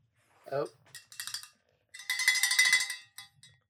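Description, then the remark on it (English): A bright metallic bell rings, first in a couple of short jangling bursts, then in a louder sustained ring lasting about a second before it cuts off. “Oh, I don't know where the bell. Oh, yeah, it's over there.”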